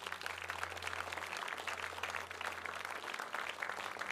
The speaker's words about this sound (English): Can we give Jesus a clap?